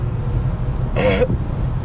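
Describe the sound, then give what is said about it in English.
A single short, raspy cough or throat-clear bursts out midway, loud and brief, over a steady low rumble with no talking. “Man, I'm choking.”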